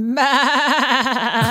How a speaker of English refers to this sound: Yeah. That's your sheep. Yeah.